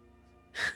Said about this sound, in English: Gesundheit.